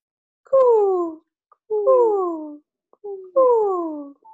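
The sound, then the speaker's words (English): Two people imitate dove coos as a lead-in to a dove breathing exercise for inner peace: three soft, hooting calls, each sliding downward in pitch over about half a second, separated by brief pauses, with no other sounds. “we're just going to do a couple of coos, and then we're going to go into the breathing, and we're going to lead you into this specific dove breathing for inner peace.”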